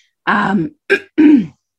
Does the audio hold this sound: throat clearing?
yes